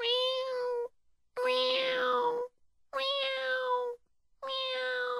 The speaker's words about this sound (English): there just happened to be a little cat on the roof.